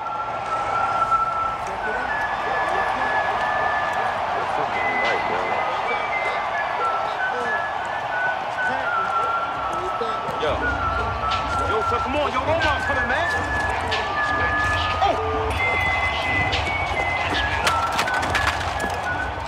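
Omar's whistle, played as a tribute to Michael K. Williams, rings out loudly and echoes across a huge stadium before a game, its held notes sliding in pitch over the constant roar and cheering of a large crowd.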